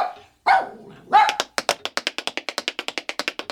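Two sharp barks from a dog named Bertie ring out, then a quick, steady run of light tapping clicks follows, like the dog tap dancing on a hard floor, continuing to the end.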